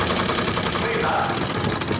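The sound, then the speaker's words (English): Liba's antique sewing machine runs steadily at 5 o'clock in the morning, a dense mechanical whir with a fast repeating clatter that holds at a constant loudness throughout. “Christine's delighted to have a live-in dressmaker, while Justin is driven crazy by Liba's antique sewing machine.”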